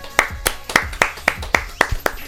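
A brief round of applause: about nine crisp, sharp hand claps in a steady, evenly spaced rhythm, fairly loud, lasting just over two seconds.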